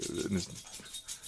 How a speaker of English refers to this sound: dog here making some noise.